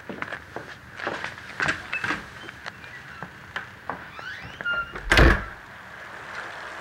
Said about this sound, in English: From here, they take a long, silent walk across the lot to … office. All you can hear are their footsteps, then a bicycle bell at one point, to which … responds, "Morning." It felt very tense.